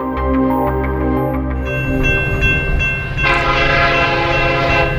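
A train rumbles past, its horn sounding in long, steady tones over the heavy roar of wheels on the rails, with the noise swelling louder toward the end.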